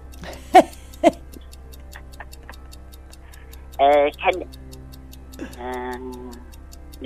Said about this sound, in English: Okay, we've got a clock. It'll run for 30 seconds.